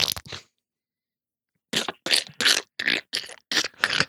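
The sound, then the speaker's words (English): Squishy footsteps on stairs: one short squelch, a pause, then about seven quick, evenly paced squelching steps, fairly loud, with no talking. “Man, those are squishy stairs.”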